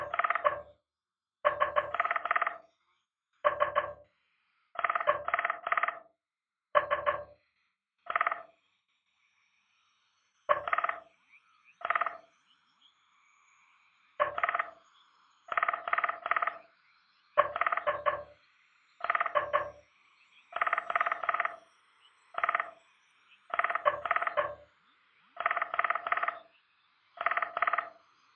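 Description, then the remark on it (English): A bird repeats a sharp, clicky call in short and long bursts with pauses between, forming a rhythmic pattern much like Morse code. It carries on steadily for nearly half a minute, with no talking. “That almost sounded like Morse code.”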